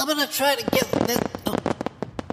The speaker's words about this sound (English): I'm going to try to get this in between the fireworks.